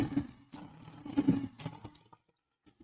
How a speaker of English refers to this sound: Give my man a good old Lions roar.